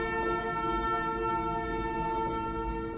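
A train passes by with a steady, sustained sound with strong tonal harmonics, likely a horn blaring continuously over a low rumble, fairly loud and unbroken throughout.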